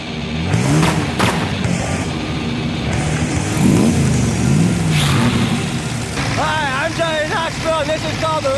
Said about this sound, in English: and we're right into our first sketch. Johnny Knoxville in the Rent-A-Car Crash-Up Derby.